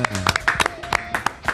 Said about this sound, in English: Welcome to this edition of the Rich Eisen Show. Everybody, give us ourselves a round of applause.